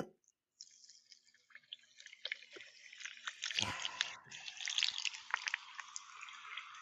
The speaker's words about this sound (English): Here's the pour. Here's the pour.